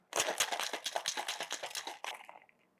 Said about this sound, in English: One little tidbit is that putting a drink through a cocktail shaker basically means that the ice dissolves into water, so you dilute the drink. So you end up with something not quite as strong and blatantly boozy.